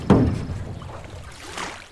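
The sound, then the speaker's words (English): A small boat rocks on lake water, starting with a hollow knock against the hull, then a soft, steady wash and lapping that swells briefly near the end. No one speaks. “Look at that lake. Is that a boat? It is a boat. Hop in.”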